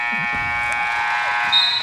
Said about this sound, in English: Does the buzzer seem loud here? Yeah, it is a loud buzzer.